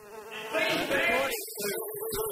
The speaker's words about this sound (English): If you listen closely, you can always hear bees.